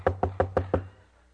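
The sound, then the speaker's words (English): Five quick, evenly spaced knocks on the wooden back door of a house, fairly loud, followed by a brief quiet tail with no voices. “He knocked on the door.”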